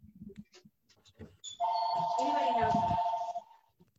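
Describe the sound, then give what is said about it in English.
A phone rings with a loud, steady electronic tone lasting about two seconds, preceded by a few faint snatches of people talking. “I can't find my phone. Can you hold?”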